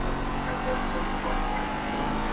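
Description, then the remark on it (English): A car engine drones steadily and loudly throughout, a dense, continuous hum with layered harmonics, as a taken car is driven back to a house at speed, with no talking over it. “Yeah, go back in the car and drive it back to your house.”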